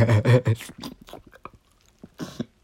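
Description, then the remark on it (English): A deep, loud burp from the diaphragm rumbles out at the start for about half a second, followed by a few faint mouth clicks and a short breathy sound near the end. “I don't know if y'all heard that, but that was me burping. I was burping from the diaphragm.”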